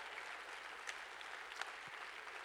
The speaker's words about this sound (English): If that's you this morning, clap your hands and say, that's me, that's me, that's me.